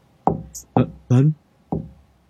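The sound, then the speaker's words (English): A mother gives three soft, evenly spaced knocks on her son's wooden door upstairs, with a short voiced call breaking in between the second and third knock. “I was taking a nap upstairs, and I gently hear some tapping on my door.”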